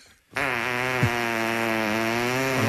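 A loud, sustained fart noise blasts into a microphone held to a man's rear during a live band show, one continuous low buzzing rasp with a rich, reedy tone that holds steady for over two seconds after a brief silence. No talking.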